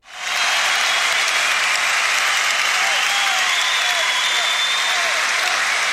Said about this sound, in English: When you ask the crowd where Brooklyn at, and then they all cheer. It's interesting. Crowd noise? Interesting. Yeah, crowd noise.